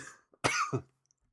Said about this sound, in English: I'm blowing my nose, but it looks like I'm in The Conjuring.